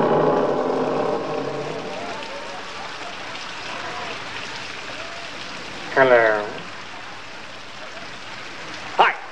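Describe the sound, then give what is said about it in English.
Heavy rain pours steadily throughout, a constant dense hiss, in a film scene of Brad and Janet approaching the mansion, Oakley Court, and pressing the doorbell. Muffled voices murmur early on, and two short, sharp sounds cut through the downpour near the middle and end. “We see them approaching Oakley Court, or in this case the mansion, in the pouring rain, and they get to the door and they press the doorbell.”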